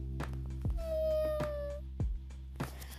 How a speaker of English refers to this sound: In fact, I even brought my kitty with me today.